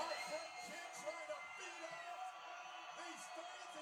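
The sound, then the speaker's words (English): A wrestling arena crowd of San Antonio fans cheers wildly for Michaels (HBK) as he goes for a top rope elbow drop on Taker: a dense, continuous roar of many voices with scattered whoops and yells rising above it, staying loud and steady throughout. “And you got all the crowd just going insane for HBK, because HBK is so good.”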